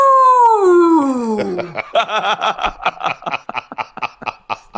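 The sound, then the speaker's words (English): A voice imitates a long, drawn-out boo that slides steadily downward in pitch for nearly two seconds, then breaks into a run of rhythmic, choppy laughter. “And I'm going, boo!”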